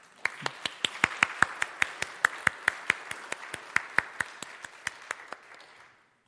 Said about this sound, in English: I think that deserves another applause.